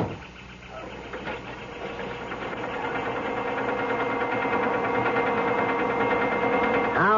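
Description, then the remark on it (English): A car engine idles with a steady, low mechanical rumble, then revs and holds a rising, sustained drone as the car pulls away, with a brief whirring sweep near the end. “I got a call from the chalet to hold the car for you. Leaving? Yeah. All right, hop in. We're off.”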